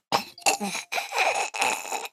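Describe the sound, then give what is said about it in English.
A person makes strained, raspy choking sounds, four harsh gagging bursts in quick succession with rough throaty breaks between them, fairly loud and with no speech. “I'm not choking again.”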